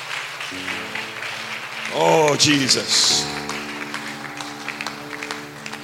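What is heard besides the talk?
audience clapping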